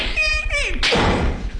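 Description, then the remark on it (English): A front door creaks open with a short, whiny squeal, then bangs shut with a single loud thud that leaves a rattling, noisy tail. “Opens the front door.”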